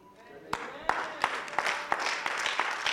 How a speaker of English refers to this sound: Your clapping is not enthusiastic at all. There is no euphoria in your clap.